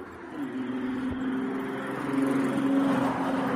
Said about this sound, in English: I mean, traffic sounds can be soothing.